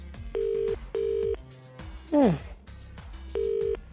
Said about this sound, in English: The lads must be gone now. That's unusual, I'm ringing them on their mobiles. No answer there.